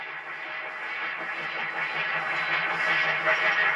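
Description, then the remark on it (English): A distorted train sound effect: a dense, harsh, processed roar that holds steady for several seconds and swells slightly louder toward the end, with no voices. “Here's what it would sound like in our world. Ah! There's a train coming right at me!”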